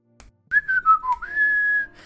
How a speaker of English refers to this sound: Okay, so you guys make it to the second floor, and immediately the first thing you guys start to hear is somebody whistling.